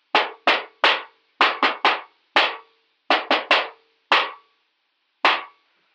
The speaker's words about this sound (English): the main midnight streets of Babylonia, Vex's counterpart, along with her color-coded confederates, are hiding in the shadows of a seedy alleyway, making sure the coast is clear before Purple goes to knock on the thick metal door set into the wall.